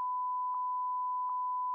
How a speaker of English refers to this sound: Please actually bleep that. I will bleep that. That is my social security number.